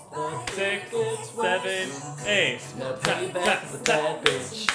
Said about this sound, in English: Okay, let's all clap. Ready? We're going double time.